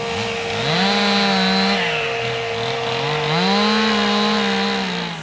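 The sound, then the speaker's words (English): A chainsaw carving wooden animals, usually a bear and an owl, its loud buzzing engine rising and falling in pitch as the throttle revs, running continuously with no voices. “What they're actually doing here is carving animals, wooden animals.”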